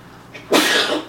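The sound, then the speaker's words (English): A single sneeze: a faint, quick intake of breath, then a loud, breathy burst that trails off over about half a second. No one speaks. “Bless you.”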